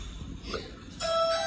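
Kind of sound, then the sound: household object, doorbell ringing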